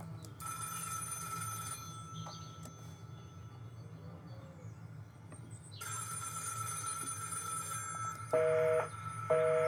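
A telephone rings in bursts, a bright jangling bell that stops, then resumes with a steady electronic trill, over a constant low hum; the phone keeps ringing even though it has just been disconnected.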